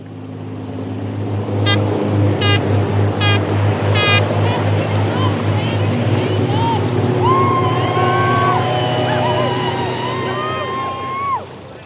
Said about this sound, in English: Waves heave us up and down as we grip each other's kayaks tight to hold the raft together. Motorboats acting as law enforcement circle around us, trying to hook and detain our friends.